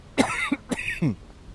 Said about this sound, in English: Still have this cough.